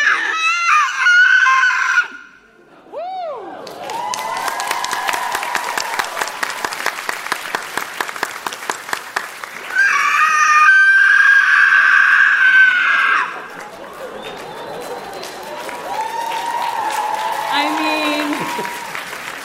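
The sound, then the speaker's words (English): A voice imitates the howl of the Shirsu monster as Aang airbends a fireball into its tongue: shrill, wavering wails in several loud bursts that rise and fall in pitch, set against a dense, crackling, rasping texture. “The Shirsu lets out a howl.”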